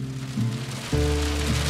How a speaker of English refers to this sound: Right as we get closer to the prison, it's absolutely pouring. Saw a few forks of lightning. No thunder yet.